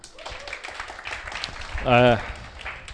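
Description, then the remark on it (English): An audience applauds a newly employed staff team, a dense, steady patter of many hands clapping throughout, with a single voice briefly rising loudly above it near the end. “You can give them a clap.”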